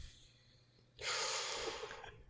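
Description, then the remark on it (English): After a brief quiet moment, a single forceful breath hisses through pursed lips in a pursed-lip breathing demonstration, a steady airy rush lasting over a second with no talking. “Don't do perch lip breathing.”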